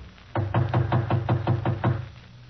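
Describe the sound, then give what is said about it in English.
Someone raps on the door of apartment 5D, which stands partly open, about nine times in a quick, steady rhythm. The knocks are solid, with no voices around them. “I'll knock again.”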